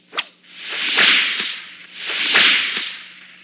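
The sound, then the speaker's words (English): A bullwhip cracks sharply three times as the page-turn cue of an Indiana Jones and the Temple of Doom read-along story, each loud snap set apart by a rising, airy swish as the whip swings through the air; no voices. “You will know it is time to turn the page when you hear the bullwhip crack like this.”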